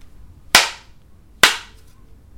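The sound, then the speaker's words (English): Tarot cards being shuffled: two sharp, papery bursts about a second apart, each snapping in loudly and fading quickly, with a third starting at the very end. No one speaks. “For people who are not familiar with tarot, I have to shuffle.”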